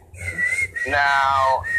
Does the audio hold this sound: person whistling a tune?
yes